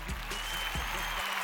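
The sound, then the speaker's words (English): A short burst of applause, dense overlapping claps forming a steady hissy wash, with a couple of soft low thumps underneath. No one talks. “If you beat your trial, hey, I'm going to give you a little round of applause.”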